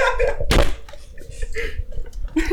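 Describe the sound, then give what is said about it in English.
Headphones thrown down with one sharp, heavy thunk that bursts out loudly and dies away quickly, while muffled voices murmur before and after. “I just threw my headphones and walked away.”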